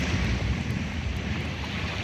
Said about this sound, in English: Hey, Google, help me relax. Playing relaxation sounds. Ocean.